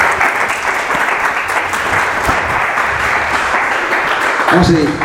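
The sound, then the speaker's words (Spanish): Sustained applause offered to God from a large gathering, a dense steady wash of many hands clapping at once for about five seconds, loud and even throughout with a voice briefly rising near the end. “Un aplauso a Dios.”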